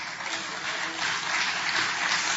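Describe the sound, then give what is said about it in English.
A steady wash of audience applause, dense crackly clapping that holds at an even, fairly loud level for a couple of seconds without any voices. “And I'm not basing that on the applause.”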